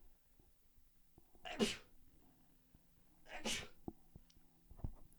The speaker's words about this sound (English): I hate sneezing on the fucking podcast. God bless.